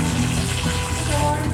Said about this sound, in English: Mom, you peeing up there? What are you doing? Watering your plants or? Why?